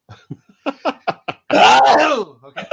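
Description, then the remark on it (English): A few short voiced sounds lead into one loud, drawn-out sneeze with a breathy, voiced burst that trails off, followed by a couple of quick vocal noises. “I'm not thinking I'm going to sneeze, I think.”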